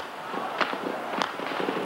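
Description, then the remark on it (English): Gunshots crackle through the streets of central Peking near Tiananmen Square: two sharp, prominent cracks stand out among scattered fainter pops over a steady, noisy outdoor background. “The noise of gunfire rose from all over the centre of Peking.”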